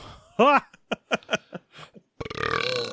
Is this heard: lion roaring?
no